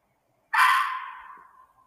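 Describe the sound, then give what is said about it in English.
A single loud, harsh bobcat shriek bursts out suddenly outdoors at around 10 o'clock at night, raspy and wide-ranging, then trails off into a fading, wavering screech over about a second and a half. No one speaks. “Screaming bobcat. All right, it's like 10 o'clock at night, and hearing something weird out here. Just one shriek and that's it.”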